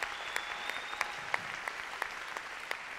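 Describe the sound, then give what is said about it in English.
An audience at a conference claps steadily, a dense wash of many hands with a few sharper individual claps standing out at a moderate, even level, with no voices over it. “Can we all give them a round of applause?”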